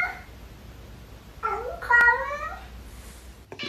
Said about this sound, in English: Well, you know what? The joke's on that guy in the end, because I do know this as someone who had a cat when I was a kid. When that cat made that sound, they vomited right afterwards. Oh. That was always that. Hairball.